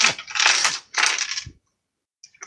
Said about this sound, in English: I just did you just roll all your dice? I have one set, and then I got another set that were metal. That was a gift, so they're very loud. Ooh, metal dice! Yeah. Beautiful. I don't really use them though because they always roll like 20s.